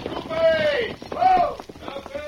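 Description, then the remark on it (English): Hooves of two riders' horses, one white, coming slowly down a trail clip-clop steadily in the background while men shout loud commands to halt a troop, the voices drawn out and dominating the brief scene. “looks like one of them's wearing a black mask. One on the white horse.”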